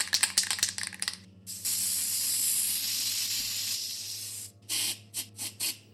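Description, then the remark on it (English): A spray paint can rattles with quick clicks, then releases a long, steady hiss of spray, followed by several short bursts of spraying, as teal paint is sprayed through a wide-nozzle fathead cap onto a black wall. “The wide nozzle of the cap deposited gentle washes of teal over the black.”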